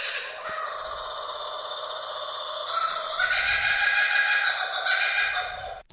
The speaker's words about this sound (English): And, of course, we played it before because somebody texted through their favourite sound is kookaburras.